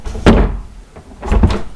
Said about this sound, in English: If I close the door,